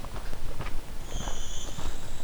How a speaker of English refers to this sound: Here is our blue-winged warbler doing its bee buzz song. And an ovenbird too. A loud ovenbird.